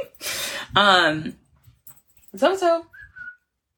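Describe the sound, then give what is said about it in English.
A person calls a dog inside with two drawn-out, sing-song shouts, followed by a short rising whistle, fairly loud. “Come on, Zoe. I'm trying to get my dog in.”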